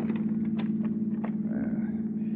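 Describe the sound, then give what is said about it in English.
A steady low engine drone from inside a taxicab weaving through traffic, with a few soft knocks and rattles scattered over the continuous hum. “As the taxicab weaves through traffic, you open the portable typewriter case on the floor where the driver can't see it.”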